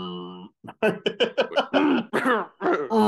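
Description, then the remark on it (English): A voice imitates a man holding in a cough: a tight, strained hum, then a quick run of choppy, throaty bursts and grunts, fairly loud, with no actual speech. “I feel like he would hold the cough.”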